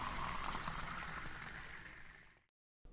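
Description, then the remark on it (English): Water is poured for a drink by someone too thirsty to sleep, pouring steadily in a continuous splashing rush for a couple of seconds, fairly loud, then cutting off abruptly into silence before a brief sound at the very end. “I need more water. I'm too thirsty to sleep.”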